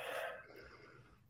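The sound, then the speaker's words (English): A single deep recovery breath after a breathing exercise, drawn in sharply through the mouth and nose, fading into a softer airy exhale with no talking. “Some recovery breaths, whatever that means for you, in through the mouth, in through the nose.”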